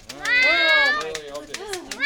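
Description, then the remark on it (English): A cat meows, one long drawn-out wail followed by a shorter, rising second meow, both fairly loud and clear. “Don't let Puddles meet the cat.”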